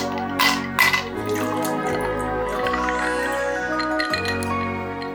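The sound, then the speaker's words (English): A couple of sharp glass clinks, then a drink of Blackwood's Vintage Gin, a Scottish gin from the Shetland Islands, pours steadily into a glass, the gurgling tone shifting as it fills, with no voices. “And as such, I think it would be churlish not to get out a tonic screwdriver and pour you a drink.”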